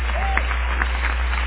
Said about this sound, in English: Clap your hands to the Lord now.